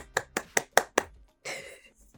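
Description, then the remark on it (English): Five sharp hand claps in a quick, even rhythm, each a crisp slap, followed by a brief burst of hissing noise that fades out. No one speaks. “So this win deserves a hand clap.”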